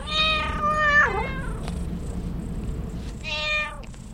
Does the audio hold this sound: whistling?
no